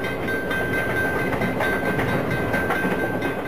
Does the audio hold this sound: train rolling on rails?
yes